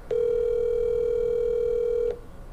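One steady two-second burst of a telephone ringback tone while a phone call is placed, a clear, even electronic hum that starts and cuts off cleanly, heard alone over faint line hiss.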